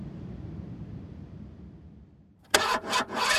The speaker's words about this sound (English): My car just sounds like it's dying when it's starting, but then it runs pretty smooth. Okay, that probably needs servicing.